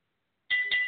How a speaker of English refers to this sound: There's the bell. We got a 20-minute time limit on this.